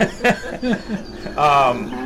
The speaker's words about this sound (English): What's that pig doing there? Okay. Watch him so he doesn't bite my tuchus, all right?